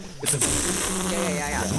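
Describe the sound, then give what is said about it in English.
A voice mimics air escaping from a balloon: a couple of short breathy hisses, then a thin, wavering squeal that rises and falls in pitch before trailing off. “You know, like when you blow up a balloon and then you just let a tiny little air out of the balloon, it'll like squeak.”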